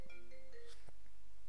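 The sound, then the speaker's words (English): A phone's electronic ringtone for an incoming call plays a brief run of steady, layered tones for under a second, then cuts off with a soft click. It is fairly quiet and no one speaks. “Whoa, one sec. Phone call.”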